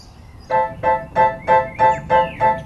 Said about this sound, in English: Can you hear that? That's the sound of the birds at the end of the day.